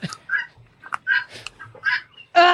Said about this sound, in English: Is that the guinea hens? Those are guinea hens, and she knows how irritating guinea hens are to me, and she did that on purpose. Yes, that okay. is a guinea hen, and they never shut up.